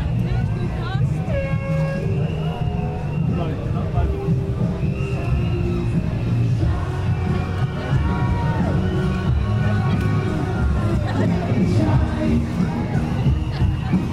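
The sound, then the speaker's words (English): A dense, steady roar of crowd noise and babble as a Pride parade float, a big lorry carrying lots of people, passes by, with a deep engine rumble underneath and scattered high tonal sounds cutting through. “Okay, we have a float approaching with lots of, see, they're big lorries with lots of people on them doing stuff.”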